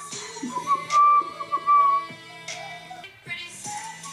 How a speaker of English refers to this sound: Ooh! The whistles.